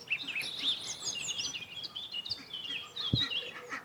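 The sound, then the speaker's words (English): A robin perched on top of a scrap pile at an allotment sings a continuous, high-pitched warbling song of quick, tumbling phrases, fairly soft throughout, with one brief low thump near the end and no voices. “There's a robin perched on top of the scrap pile.”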